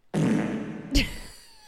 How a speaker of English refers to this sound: I don't know, farting and shit.